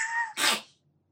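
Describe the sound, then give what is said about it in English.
A cat with an infection in his nose sneezes once: a brief squeaky, nasal wheeze followed by a sharp, hissing burst, then quiet. No one speaks. “Oh, sorry, my cat is... Wait.”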